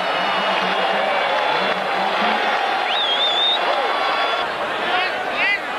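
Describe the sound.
A stadium crowd applauding and cheering Brayton Poulter's try on his debut in a dense, steady roar that stays loud throughout, with a few shrill whistles rising above it and voices mixed underneath.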